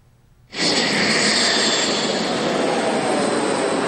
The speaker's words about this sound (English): The Air Force conducted landings and takeoffs right on the roadway, simulating a scenario in which Pingdong Air Base is destroyed by the PLA. This was Taiwan's first ever emergency landing drill conducted on a standard highway.